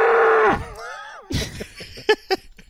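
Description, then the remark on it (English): A copperhead snake sound: a loud, cow-like bellow with a wavering, sliding pitch, followed by a few short, rasping, breathy bursts. “That was the copperhead. A snake cow.”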